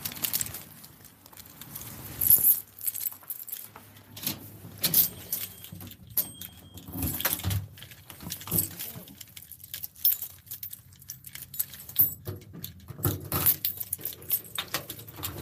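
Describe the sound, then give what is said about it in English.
Car keys jangle and clink repeatedly in irregular bursts of bright metallic rattling over a low rumble, as if someone is rummaging through a set of keys. “Hey, you know where my spare keys are at for the car?”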